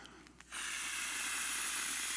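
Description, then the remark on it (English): A beach ball being inflated by mouth: a couple of soft puffs, then a strong, steady airy hiss of rushing breath that holds on without a break, with no talking. “So He starts breathing His life into creation.”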